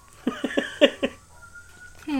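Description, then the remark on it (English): A male cat lets out a quick run of five short, chirpy meows, fairly loud and evenly spaced, before a voice starts up at the very end. “There's a cat. He's jumping out at me.”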